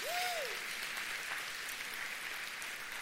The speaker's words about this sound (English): Hey, I want to celebrate all of our moms who are here today at both of our campuses. Can you give our moms a big round of applause?